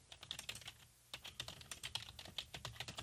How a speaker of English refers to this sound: Do you hear me typing that in? Yeah, we could hear it.